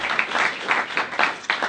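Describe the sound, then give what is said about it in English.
A church audience applauds steadily, many hands clapping in a dense, sustained wash with small surges, moderately loud, with no voices standing out. “Let's give a round of applause to everyone watching in or listening in.”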